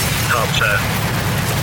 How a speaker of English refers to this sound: So that explosion was the end of the countdown there.